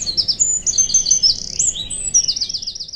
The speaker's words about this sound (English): The waves wash you up on a beach where all the commotion stops. The clouds go away, and all you can hear and feel is the birds chirping and the hot sand.